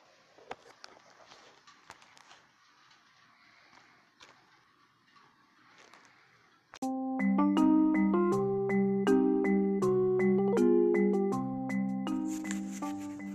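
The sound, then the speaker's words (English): Faint clicks and rustling give way to a loud, bright electronic melody of stepped tones, phone notification sounds chiming repeatedly for several seconds. “I just want to take a few seconds to apologize for all the background notification sounds.”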